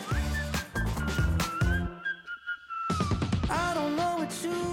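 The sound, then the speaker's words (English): A bright whistled melody rides over a full pop band with punchy drums and bass, briefly thinning to a quieter break midway before the beat returns; the whistling intro of a pop song that played in the film Top Gun Maverick. “That intro with the whistling part, here it is again.”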